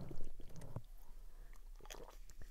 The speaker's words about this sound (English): Take a quick sip real quick, and we'll head into the defense.